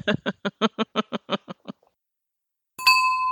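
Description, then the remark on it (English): A burst of rhythmic laughter fades into silence, then a bright pager notification chime rings out, a clear electronic tone with ringing overtones that sustains to the end. “Oh, and that's our pager notification.”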